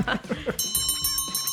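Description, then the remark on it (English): A bright bell rings in a rapid series of short metallic strikes with shimmering overtones, like a ringing closing bell, following a brief burst of chuckling voices. “Oh, ladies and gentlemen, there's the closing bell.”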